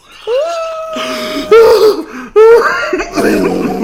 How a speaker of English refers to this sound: I'm coughing. I'm coughing and I'm having shortness of breath. It's like I've got coronavirus.